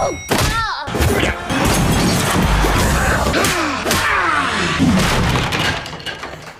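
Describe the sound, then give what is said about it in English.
A compilation of Paul Blart's falls from the film trailer: a rapid string of loud thuds, thumps and crashes, with cracking and breaking-glass sounds, like repeated falls and collisions. Swooping whistle-like tones slide through the continuous clatter. “String together of all his times he's fallen down.”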